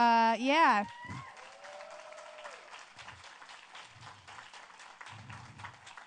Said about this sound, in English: Those leaders back there, can y'all cheer for them?